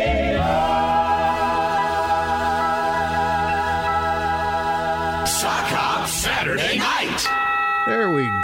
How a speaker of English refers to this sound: On the chime, it is 8:41